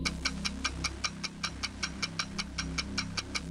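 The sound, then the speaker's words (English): A game show countdown clock ticks steadily, about five crisp ticks per second, over a low, droning musical bed that shifts pitch in steps. No one speaks. “The clock will begin after I finish reading the first question.”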